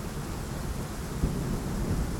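Steady rain pours with a constant hiss while low thunder rumbles underneath, swelling briefly midway. No voices, just the continuous storm at moderate loudness.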